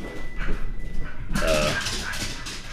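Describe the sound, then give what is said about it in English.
Dogs bark in a short, busy burst after a second of low background noise, with sharp yips and higher whining barks overlapping in the latter half. “See, there's my dogs.”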